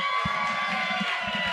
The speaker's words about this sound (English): How about that applause? What's everybody so excited about?